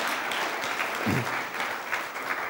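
A steady round of applause from a group, dense continuous clapping with a brief low thump partway through, holding at an even moderate loudness throughout.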